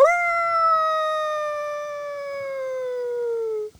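A single long, clear howl rises quickly and then holds a steady, slowly falling tone for several seconds before cutting off. It sounds close and fairly loud, with no talking.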